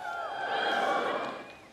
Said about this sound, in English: I don't know why they always cheer. It's just like that homeschool thing. Like, we are finally outside. It's just an exciting thing to be outside, I guess, if you're a homeschool student.